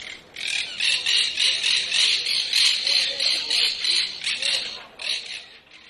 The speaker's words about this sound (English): that monk parakeet that I got the noise from was from Barcelona